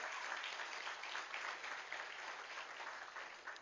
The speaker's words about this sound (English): So thank you, staff, both sides. Give them a round of applause for that.